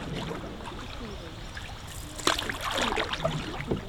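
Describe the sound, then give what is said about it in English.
Water laps and trickles around a small boat cruising up Cromford Canal, with soft splashes and sloshing throughout and a brief louder splash midway. “so we decided to get in his boat and go for a little cruise up the canal.”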